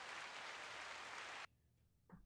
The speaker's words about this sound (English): But I hate how the applause just cuts out. Can't it fade? And if I hold it, does it just keep going endlessly? Or does it kind of fade out on its own? I think it's just a loop. It just keeps going.